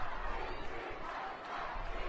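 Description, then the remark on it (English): A large crowd in Chicago, heard in a played video, roars and chants in a dense, steady wash of voices, loud and continuous throughout with no single speaker standing out. “Look at that crowd.”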